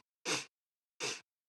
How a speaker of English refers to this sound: Sir, are you sniffing around us? Oh, it's allergies.